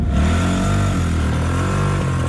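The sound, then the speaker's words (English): The engine of a five-gear car with a separate reverse gear lever revs loudly and continuously, its low droning hum rising and dipping slightly in pitch, with no voices over it. “This car has 5 gears, just like the cars that you are used to.”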